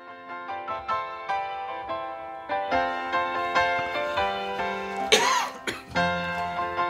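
man coughing

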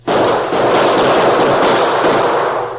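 exchange of gunfire

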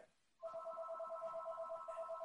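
home telephone ringing

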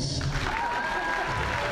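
audience applause

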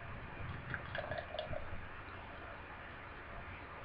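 beer being poured

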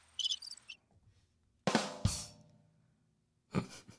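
crickets chirping

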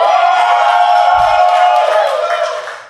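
crowd cheering

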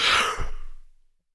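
a yawn

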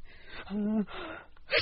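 sneeze

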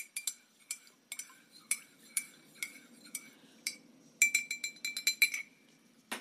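cup clinking

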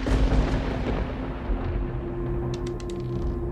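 thunder crack sound effect

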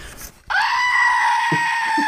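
screaming goat toy squeezed

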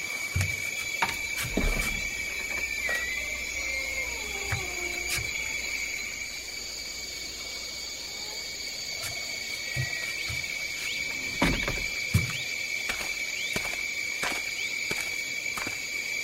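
frogs croaking

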